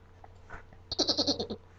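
A goat lets out a single wavering bleat, a rapid stuttering run of pulses lasting about half a second, fairly loud against a quiet background hum.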